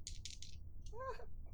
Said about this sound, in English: All right, we're just going to roll 2 dice and see what happens.